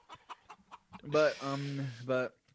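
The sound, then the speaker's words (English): A person imitates a chicken, starting with a quick series of short clucks and then breaking into louder, drawn-out squawking bawks, fairly loud. “I'm taking credit for this chicken.”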